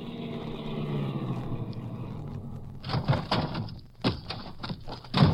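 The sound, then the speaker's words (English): A car engine rumbles steadily as the vehicle drives up to Alva Briggs Ranch, then gives way to a run of sharp, crunchy clatters and knocks, like tires on gravel and a door as it stops. “We drove over to Alva Briggs Ranch.”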